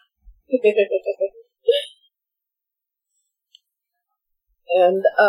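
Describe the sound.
A voice imitates dial-up modem noise with a quick run of pitched, warbling chirps, a short squeal, then a pause before another burst of buzzy, tonal warbling.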